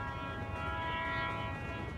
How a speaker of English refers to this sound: After a minute, I hear the faint rumble of heavy wheels on invisible tracks and the long, low notes of the train's whistle.